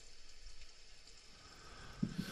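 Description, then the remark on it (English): Soft, steady rain patters on a porch as a faint, even hiss, with a couple of slightly heavier drops landing near the end. No voices. “Well, I'm glad you made the suggestion to come over and sit down on the porch and listen to the rain.”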